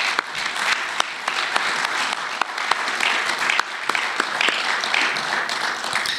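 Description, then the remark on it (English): An audience applauds steadily for about six seconds for two debaters at the close of a debate, a dense wash of many hands clapping with sharp individual claps popping out, holding an even loudness throughout with no talking. “So can we maybe have a round of applause for our two debaters this evening?”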